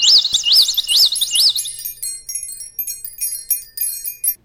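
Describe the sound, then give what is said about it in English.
Bright, looping bird song fills the opening seconds, a repeated rising-and-falling whistle, then gives way to scattered high chirps and tinkling notes continuing quietly until the end. “Imagine a beautiful sunny day with a few birds singing, a few light clouds out in the sky, maybe some wind chimes.”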